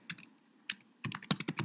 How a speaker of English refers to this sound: All right. Pardon the typing here.